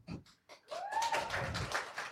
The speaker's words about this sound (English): A golf clap? Lukewarm. Yeah. So maybe they hate you, right?